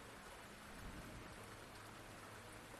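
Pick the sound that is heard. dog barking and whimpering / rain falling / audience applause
rain falling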